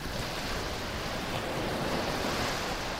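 Ocean waves crash far below onto a narrow beach in a steady, full-bodied roar of surf, with no distinct individual breaks and no voices, just continuous hissing water throughout.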